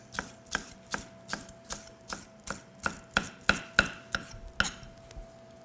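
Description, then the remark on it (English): A knife dices vegetables on a cutting board in a steady run of about fifteen crisp, sharp chops, growing somewhat louder partway through, with a faint steady tone underneath and no talking. “So I want to dice up some...”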